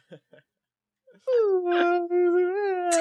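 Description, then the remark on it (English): A person imitates a ghostly moan, a long, loud, wavering vocal tone held for nearly two seconds, preceded by a few brief, soft sounds. “Do you moan a lot”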